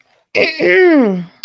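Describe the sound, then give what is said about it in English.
A single loud throat clearing, a rough burst sliding into a drawn-out voiced 'ahem' that falls in pitch, followed by a brief click and silence, done before reading off a long list. “I had to clear my throat for this long list of things I'm about to rattle off.”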